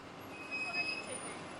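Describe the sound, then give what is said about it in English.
Ambience at a new downtown bus depot in Wilmington on a windy May morning, riders waiting for transfers: a steady wash of engine and traffic noise from idling buses, with a thin high-pitched whine rising briefly partway through and muffled voices faintly in the background. “At the new Laura Paget bus depot downtown, half a dozen riders mill around on a windy May morning”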